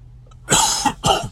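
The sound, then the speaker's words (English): Two dry, harsh allergy coughs, not a smoker's or COVID cough, in quick succession, fairly loud, the second slightly shorter, with no talking around them. “It's a dry cough. It's an allergy cough.”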